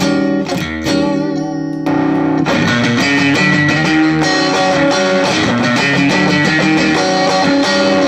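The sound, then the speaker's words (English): A clean electric guitar plays strummed chords and ringing single notes through a drive pedal set to approximate a Blackface amp, specifically a Fender-style Super Reverb, with a bright, slightly reverberant tone, steady and fairly loud, with no voices. “So that is the best approximation of the sound of a Blackface amp, specifically a Super Reverb.”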